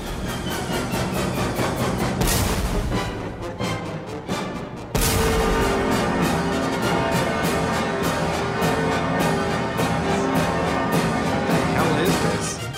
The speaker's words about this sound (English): This is the 1812 Overture by Tchaikovsky, and every once in a while, it's got cannons, it's got church bells